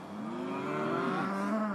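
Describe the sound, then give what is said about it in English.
A cow among grass-eating cows outdoors in nature gives a long, drawn-out moo, loud, its low droning call bending in pitch as it holds for nearly two seconds over faint outdoor background noise. “They're funny, aren't they, cows?”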